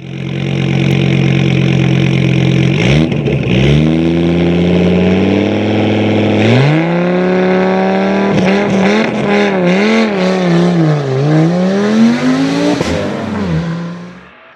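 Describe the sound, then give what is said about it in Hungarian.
A four-cylinder 1461 cc diesel company car engine revs loudly, its droning pitch climbing in several surges and dipping back between them, with no voices over it. “És már az se baj, hogy egy 4-es dízel.”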